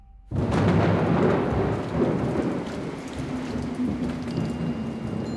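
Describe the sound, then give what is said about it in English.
A loud thunderstorm erupts after a brief hush: heavy rain pours steadily while deep thunder rumbles underneath, filling the space with a dense, continuous roar. “The story goes that on a dark and stormy Samhain night, Nyrra, a warrior, was held up in the castle of King Aldhil and Queen Maeve.”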